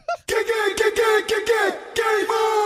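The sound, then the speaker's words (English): Loud, high-pitched yelling and cheering voices carry on almost without a break for a couple of seconds after a short quiet start, with a few quick dips between shouts. “The crowd is going crazy. Everybody is hyped up.”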